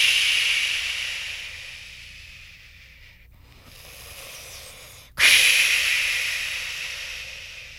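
Ocean waves crash against the Santa Monica Pier and its wooden poles: a broad, hissing rush of surf fades to a low wash, then a sudden loud crash bursts in and slowly recedes.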